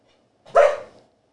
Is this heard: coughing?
no